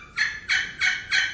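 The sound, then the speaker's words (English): Four evenly spaced raspy yelps of a turkey hen, played by hand on a slate call, ring out clear in a steady rhythm with no talking. “Because when you hear hens in the woods, that's what I always got in my head. I'm trying to sound like.”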